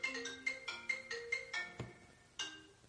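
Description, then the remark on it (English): A phone ringtone for an incoming call chimes in a quick, repeating pattern of bright electronic tones, each note pulsing at a steady rhythm, then pausing briefly before starting again, with no voices. “who's calling me?”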